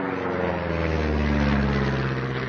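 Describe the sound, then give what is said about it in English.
A propeller aeroplane drones steadily overhead, its low engine hum and stacked harmonic tones holding loud and constant throughout, with no voices. “It's like the biological, the abiotic, so the wind and the waves and the, you know, river, and then the aeroplane going overhead.”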